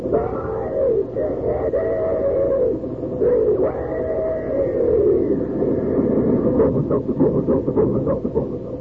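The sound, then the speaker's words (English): A loud steam-train effect, the famous talking train, whose wailing whistle tones and rhythmic chugging are shaped into speech-like syllables, continuous with brief pauses, the chuffing quickening toward the end. “While we're waiting for Ellery to tell us something about next week's mystery, come on there, swing aboard our famous talking train.”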